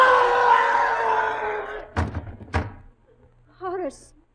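Two heavy thuds land against a front door about half a second apart, as if someone is falling into it, after a loud rushing noise and before a brief wavering vocal cry.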